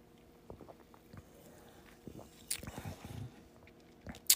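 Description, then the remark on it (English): Someone quietly takes a sip of a drink, with soft mouth noises, a brief slurp and a swallow, then a short breathy sound near the end. No one speaks. “I gotta take a sip of this shit right here.”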